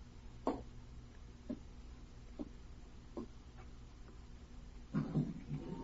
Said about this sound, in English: He's raising the window. Not very far, Watson.